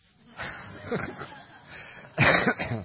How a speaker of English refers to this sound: See, now I'm coughing.